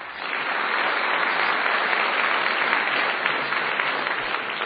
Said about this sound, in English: And I know you just applauded your hearts out for them, but when I name them again, I'm going to ask you to do that one more time.